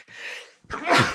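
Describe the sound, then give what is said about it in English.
A single loud sneeze: a breathy drawn-in inhale followed by a sharp, explosive burst of air, with no talking in between. “Bless you.”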